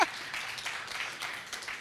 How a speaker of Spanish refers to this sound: Man, pensé que todos iban a aplaudir y gritar y todo. Vamos, aplaudan.